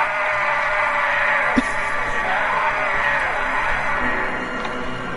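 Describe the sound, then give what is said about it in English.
In a movie clip, Van Damme's character lets out a long, loud, strained yell of pain as he is crucified, holding steady for about five seconds, rough and harsh, with a brief sharp knock partway through. “I have the yell when he's crucified.”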